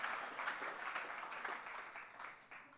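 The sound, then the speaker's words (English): A crowd breaks into sustained applause, a dense rush of many hands clapping at once, steady and loud before gradually thinning out toward the end. “Everybody give Joel a round of applause.”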